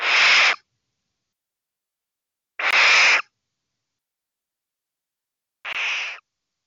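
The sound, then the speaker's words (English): A barn owl's harsh, hissing screech sounds three times, each lasting about half a second, separated by long silent gaps. The calls are loud and breathy, with no other sounds around them. “the answer is barn owl”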